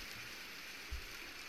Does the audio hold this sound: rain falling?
yes